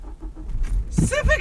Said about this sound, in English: Just bumped. Getting in the car, just didn't duck enough and hit my head.